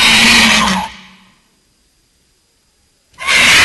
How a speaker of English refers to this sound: But to hear them, this is what I hear when I step out. This is, I gotta silence these things, but these are real vultures. Go ahead and play that sound. That's a real vulture.